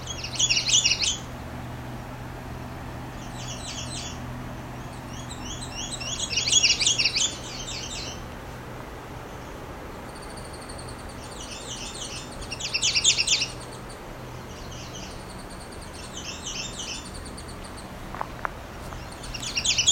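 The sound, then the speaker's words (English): Loud, high-pitched redstart songs ring out in repeated bursts of quick, sibilant notes, several phrases across the span, over a steady low outdoor hum with no talking. “Very loud redstarts here.”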